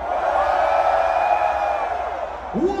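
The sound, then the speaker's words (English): A large festival crowd screams and cheers loudly on a count of three for a group photo, in one sustained, dense roar lasting a few seconds, with a single voice rising out of the noise right at the end. “1, 2, 3, scream!”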